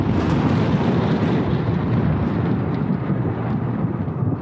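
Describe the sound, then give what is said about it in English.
A loud, continuous rumble of thunder from lightning striking the front yard of a farm rolls on without a break, deep and heavy with a hissing edge, holding steady for the whole stretch with no voices. “Six times within an hour, the farmer saw the lightning strike the furrow in the front yard.”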